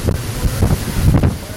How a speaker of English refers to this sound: The wind's kicking up again, man. It looks like it's going 120. I don't know. If I don't have an anemometer, I don't know how to think. Now it's really kicking.